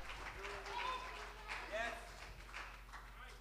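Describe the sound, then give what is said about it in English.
A church audience claps and stomps their feet in praise in a steady, dense wash of noise, with scattered voices calling out over it throughout. “Done stomping. You've just started.”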